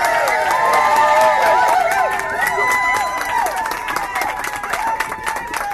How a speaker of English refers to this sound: Please give a huge round of applause for David Shoebridge.